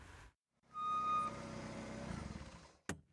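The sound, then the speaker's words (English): A car engine rumbles as the car pulls in and parks, with a brief steady beep early on and a short sharp clunk just before it falls quiet. “Abu Bakr's mom parked the car and turned around to talk to the boys.”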